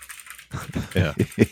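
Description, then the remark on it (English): A voice imitates mechanical keyboard typing with a quick run of four or five clacky, rhythmic mouth sounds, fairly loud, following a brief quiet moment. “Is you're on a Zoom call and someone has a mechanical keyboard. Man, can you give us a sample of that?”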